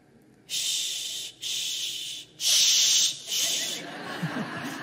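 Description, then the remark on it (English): A person makes four long, steady shushing sounds in a slow rhythm, each a loud breathy hiss separated by brief pauses, soothing a crying baby girl in her crib as she fights falling asleep. “Shh.”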